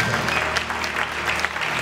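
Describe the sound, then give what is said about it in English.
A seated church audience applauds steadily, giving the Lord a hand clap, many hands clapping together in a dense, continuous wash of claps at a fairly loud, even level, with no voices standing out. “Would you give the Lord a hand clap as you're seated?”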